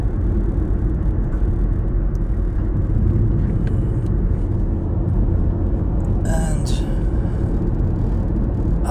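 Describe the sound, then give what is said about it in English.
Steady low rumble of a car driving through traffic behind a bus that is approaching a bus stop, a heavy engine drone throughout, with a brief brighter hiss near the end like the bus's brakes. “Driving behind buses, but I might have to right now just for a split second, because I know they're gonna get to the bus stop right here, which is not in my lane anymore.”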